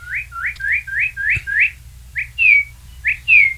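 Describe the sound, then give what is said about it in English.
A northern cardinal sings clear, loud whistled notes: a quick run of six rising slurs, then a few longer sweeping whistles, over a low steady rumble in the background. “That is a cardinal, and anybody, especially in the Midwest, has probably seen these beautiful red birds, and they are bright red, and you can see them from quite a distance, and that's what they're known for, their red body, and the beak is red, too.”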